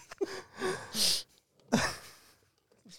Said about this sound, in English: Starts breathing on the mic real heavy.